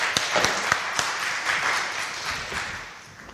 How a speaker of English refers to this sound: Whoa, give him a clap.